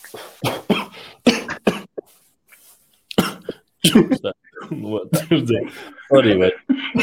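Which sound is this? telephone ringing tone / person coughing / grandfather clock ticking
person coughing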